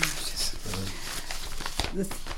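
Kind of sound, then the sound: household object, rustling of papers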